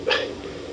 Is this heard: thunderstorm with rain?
no